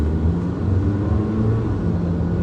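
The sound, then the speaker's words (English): A large diesel bus engine idles steadily, a low, even rumble with a faint hum that holds constant throughout, moderately loud, with no voices. “All right, the bus isn't going anywhere.”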